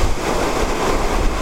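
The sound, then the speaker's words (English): Loud, steady roar of blustery wind on a rainy day, with a deep low rumble and broad hiss, buffeting continuously throughout with no voices. “And I went there on a day when the weather was none too clement, a bit like it is now, rather blustery, rainy, so you weren't tempted to leap into the beckoning water.”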